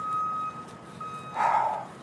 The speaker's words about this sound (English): And, you know, I could hear there's some truck backing up here. Maybe they're backing over my car.